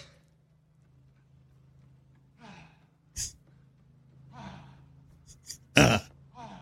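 An old man running around the block gasps and wheezes for breath, with a couple of sharp coughs breaking through and the loudest cough near the end over a low steady hum.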